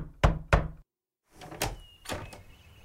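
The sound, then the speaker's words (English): A man knocks at a door: two sharp knocks, a brief silence, then a few more duller knocks with faint background noise. No one speaks. “But one day, while Aladdin was at the market buying some flour to cook golden syrup dumplings, a man knocked at the door.”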